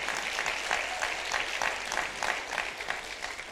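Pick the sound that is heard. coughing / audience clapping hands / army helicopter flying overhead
audience clapping hands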